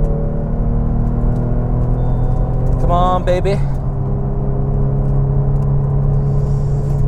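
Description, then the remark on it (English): A car engine drones steadily at highway speed as the driver accelerates to get in front of another vehicle, its low rumble filling the whole stretch, with a short rise in pitch midway as a voice speaks briefly over it. “So, I gotta accelerate here, get in front of this guy on the highway.”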